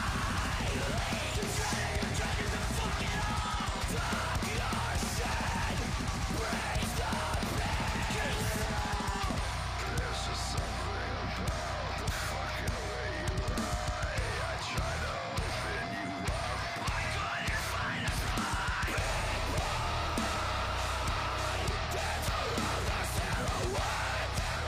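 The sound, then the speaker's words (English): A loud, dense heavy metal breakdown with chugging, rhythmic guitars and pounding drums, harsh screamed vocals layered over it from start to finish, with backup screams from one of the guitarists or bass players. “There's like one of the guitarists or bass players coming in and doing like backup screams, and his shit's like that's gnarly.”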